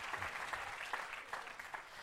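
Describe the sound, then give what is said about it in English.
An audience claps steadily for Jesus, a dense wash of many overlapping hand claps at a fairly even level, with no voices rising above it. “Give Jesus another clap, somebody.”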